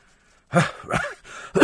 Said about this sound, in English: Sorry, excuse me. Oh, it's a little chesty cough this morning.